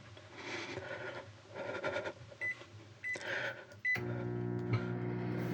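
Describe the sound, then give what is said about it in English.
Rustling and handling sounds with a few short high-pitched button beeps, then a microwave oven heating chicken nuggets starts running with a steady, even electric hum that continues to the end. “Why are you microwaving nuggets the night before?”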